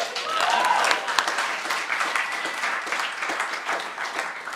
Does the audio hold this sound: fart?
no